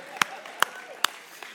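Clapping from an audience at a Mother's Day church service, applauding the speaker's mother: a few sharp, separate hand claps land at an even, unhurried pace, with a fainter final clap and a low murmur underneath.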